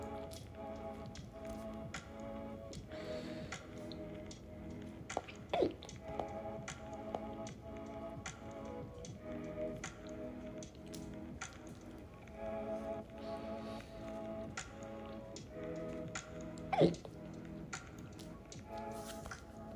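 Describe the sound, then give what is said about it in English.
A couple of sharp hiccups jump out several seconds apart, over a steady background of soft tapping and low, droning voiced tones. “We gonna thug these hiccups out.”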